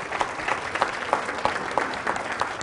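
An audience claps together in a steady round of applause, with dense overlapping hand claps and a few sharper rhythmic accents, moderately loud and sustained throughout without voices on top.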